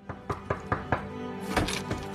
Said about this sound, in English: One day, Gene gets a knock on the door.